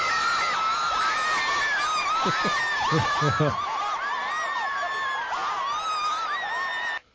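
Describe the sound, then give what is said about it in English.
A group of people scream and shriek in excited celebration after a winning curling shot, Jennifer Jones winning her first Scotties in 2005. The screaming is loud and nonstop for several seconds, with a few short bursts of laughter mixed in before the sound cuts off abruptly. “I'll admit, that's like a lot of screaming. It is a lot of screaming.”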